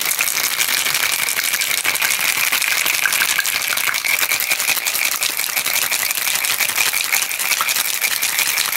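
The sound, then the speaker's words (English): A drink with honey and lemon is shaken hard in a cocktail shaker, producing a steady, dense rattling of ice that continues loudly and evenly throughout with no talking. “Give us a shake.”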